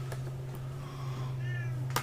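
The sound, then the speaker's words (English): A cat lets out a short, fairly faint meow at a door over a steady low electrical hum, with a few soft clicks or taps around it and no one talking. “Hey, don't meow at the door.”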